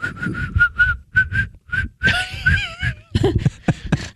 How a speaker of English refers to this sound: Why can't I whistle?